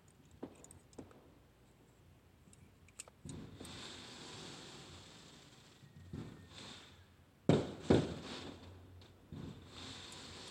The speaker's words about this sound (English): Y'all want to hear what that is? That's that 4th of July fireworks back there. So that is not shooting. No, there is no shooting. There's fireworks in the back. People shooting fireworks in my neighborhood.